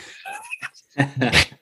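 A dog whines with high, thin gliding tones, then lets out two loud barks in quick succession, with no talking.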